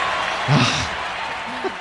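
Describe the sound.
A short burst of crowd applause played back from an applause sound effect clip, dense steady clapping filling the moment, with a brief murmur of voices underneath near the middle.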